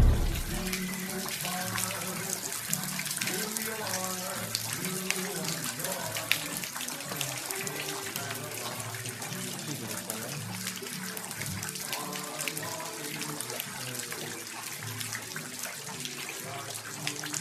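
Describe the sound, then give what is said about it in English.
Floodwater rushes steadily through Cure Thrift Shop, which is underwater, a loud, continuous wash of water lasting throughout, with an indistinct tonal, voice-like layer running underneath. “Guys, yes, literally, rivers were running through the shop. It was underwater.”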